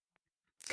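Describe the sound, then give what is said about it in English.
A loud, sudden sneeze bursts out after a moment of near silence broken only by a couple of faint clicks; the harsh, noisy blast fills the final instant. “Nice. That was a loud one.”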